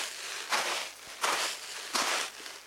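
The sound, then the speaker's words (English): Three slow, evenly spaced crunching footsteps pressing into the sand of a sand pit to imitate steps in snow, each a broad gritty burst over a steady low hiss, with no voices. “Other times, they'll just use the sand in their sand pit.”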